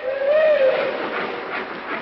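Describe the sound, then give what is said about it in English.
A steam train pulls out of a station, watched from a hotel window: a sustained, fairly loud hiss of steam with a short whistle tone near the start, rumbling steadily throughout. “Seems funny to be standing here in the window of this hotel watching our train pull out, and we've got to stay here.”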